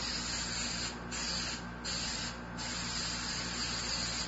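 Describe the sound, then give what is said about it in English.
A steady hissing spray of canola oil cooking spray misting onto a pan, continuous, with faint brief pulses as the nozzle is pressed; no one speaks. “So I'm just going to get my pan. I'm going to spray it first with some canola oil spray.”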